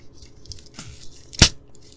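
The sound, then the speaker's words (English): A carbonated root beer bottle of dark glass with a child-lock cap is opened: a soft scrape and rustle, then one sharp, bright pop-hiss of escaping gas that fades quickly, with no voices. “Oh, that is a good sound. We know we got some carbonation.”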